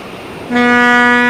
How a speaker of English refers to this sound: Okay. No, that's not the same. It's the same tug, dude. It doesn't have the same toot toot.